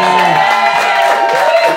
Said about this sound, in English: Now, can we also have, since he's in the room, can we also have a round of applause for the staff that dropped there twice as well? Yes.